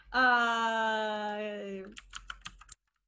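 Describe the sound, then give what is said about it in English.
A long, steady moaning tone fades out, followed by a quick burst of about half a dozen crisp computer keyboard keystrokes, fairly loud, then silence. “I hear you typing.”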